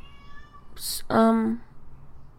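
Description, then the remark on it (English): A cat lets out a couple of plaintive meows, a high rising cry followed by a longer wavering one, over a quiet background. “First of all, my cat is crying. I can hear. Yeah, I'm sure everyone can.”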